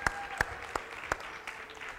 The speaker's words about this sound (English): Y'all give these kids one more round of applause. They did amazing.